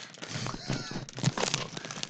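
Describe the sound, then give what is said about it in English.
A plastic bag of crackers crinkles, a steady run of sharp, irregular crackles and rustles that keeps going for a couple of seconds, with faint voices underneath. “You're going to eat out of a plastic bag crackers.”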